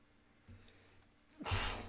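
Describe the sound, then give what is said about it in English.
A single sharp sneeze bursts out after a brief quick intake of breath, loud and hissy, trailing off over a faint low background hum. No talking. “sorry. Bless you.”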